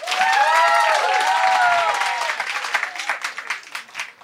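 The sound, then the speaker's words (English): An audience at a debate bursts into loud applause to vote yes, that wokeness is killing comedy, with whoops and cheers rising over the clapping at first, then the sound thins out into scattered, fading claps. “Clap if you think, yes, wokeness is killing comedy.”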